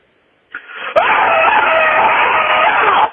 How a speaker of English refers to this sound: And then you can also leave a scream mail like this caller did.